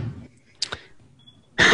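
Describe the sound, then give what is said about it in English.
Fireworks go off outside: a pair of quick, sharp pops, then a much louder, broad burst that erupts at the end and keeps going. No one speaks over them. “That firework agrees. Fireworks for La Ventura.”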